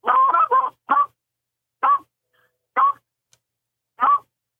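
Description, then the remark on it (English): A duck call gives a quick burst of clucks, then single clucks spaced farther and farther apart, slowing down with silence between them, as used once a flock of ducks shows interest. Clear, with no talking. “And as soon as you see them show interest and break back, and you ease off, go back to clucking.”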